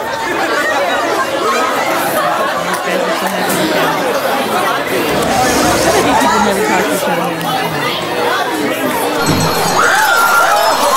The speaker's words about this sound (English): Oh, now it sounds like a casino up in here.